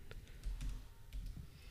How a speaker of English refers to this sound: I was looking at the screen. I'm like, is he typing anything?